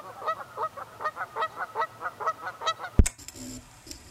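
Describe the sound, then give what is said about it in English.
A rapid run of about a dozen nasal goose honks in steady rhythm, clear, ending abruptly in a sharp thump followed by a faint hiss. “Number six, geese.”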